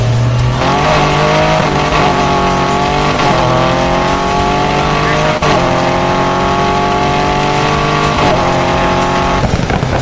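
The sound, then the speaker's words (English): A loud car engine in an Xbox video game revs and accelerates through several gear shifts, its pitch climbing repeatedly over about ten seconds with steady roaring intensity and no voices. “Let me hear my car.”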